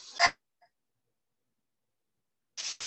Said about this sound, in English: Dogs, man. What are you gonna do, dude?